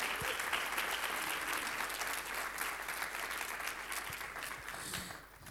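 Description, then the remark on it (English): Steady audience applause as panelists come to the front, a dense wash of many hands clapping at a fairly even loudness for several seconds before it begins to thin and fade toward the end. “Please give them a round of applause as they come.”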